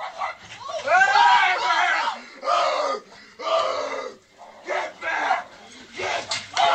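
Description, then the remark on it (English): A man screams and growls loudly and hoarsely at a small bear, in a string of strained bursts separated by brief pauses, his voice rising and cracking with aggression. “You're going to hear screaming, and that's actually the man screaming at the dog, like growling at the bear.”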